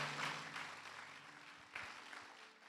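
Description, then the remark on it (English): An audience claps their hands together in a dense, steady wash of applause, loud and sustained, with low tonal hum underneath and a brief surge partway through. “Come on, clap your hands if you know that God is undefeated.”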